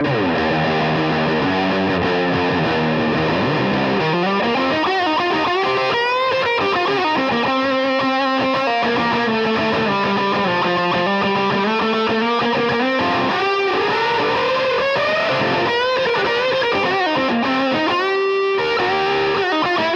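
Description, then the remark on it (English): Heavily distorted electric guitar played through a cranked amp, with long sustained notes that bend and slide up and down in pitch, loud and continuous with no one talking. “So what are you doing to get those types of variations within your cranked out sounds?”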